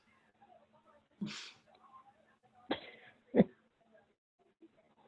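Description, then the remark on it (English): Three short, harsh coughs, spaced about a second apart, the last one the loudest, with faint background murmur between them. “Hold on. I gotta cough.”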